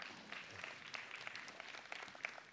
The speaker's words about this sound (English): Come on, man. Give them a hand clap tonight.